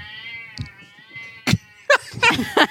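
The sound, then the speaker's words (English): A cat meows repeatedly and loudly, a few short insistent cries in quick succession over a low, steady background hum. “Get the fuck out of here, podcast cat.”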